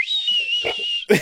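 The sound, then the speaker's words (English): A person whistles a long, steady, shrill note like a boiling kettle for about a second, loud, then breaks off into a short voiced burst. “When you get really angry, your wiener like whistles.”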